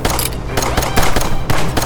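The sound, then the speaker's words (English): Rapid blaster gunfire from Alvarez fires in a steady stream of about eight loud, sharp shots over a couple of seconds, each burst cracking out above a dense rumbling background, with no voices. “Alvarez, stop shooting and get in here.”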